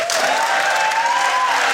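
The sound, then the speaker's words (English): An audience claps steadily, many hands at once in a dense, even burst of applause that holds the whole moment, with a faint tonal whistle or cheer riding over the top, voting by clapping for the illegal highs and drugs debate. “If you think it was the illegal high and drugs debate, that snow business, give me a clap now.”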